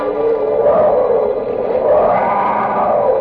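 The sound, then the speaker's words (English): A loud, sustained roar of a saber-toothed tiger, rumbling and wavering in pitch for about three seconds without a break, alone with no talking. “Chilling, awe-striking roar of the saber-toothed tiger, the bloodthirsty king of the jungle.”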